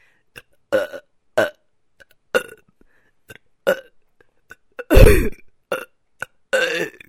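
A child in a van burps a Christmas song in a string of loud burps that rise and fall in a steady, song-like rhythm, with short pauses between them and one long, deep burp near the end.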